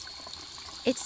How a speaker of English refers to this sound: I went into the bathroom to splash water on my face. I don't know, to clear my head, I guess.